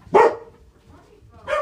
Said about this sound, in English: The only other thing to say, really, is, what's the dogs barking about? What is the dog barking about?